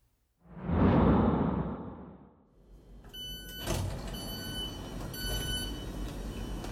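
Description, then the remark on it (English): A loud pneumatic hiss and slide of the doors of a very full train in London, terminating at Three Bridges, sweeps in and fades, then a sharp thud as they shut, followed by a steady mechanical rumble and high tonal whine as the train pulls away. “Today I'm in transit in London, stepping onto the train, very full train, sardines packed into a sardine can.”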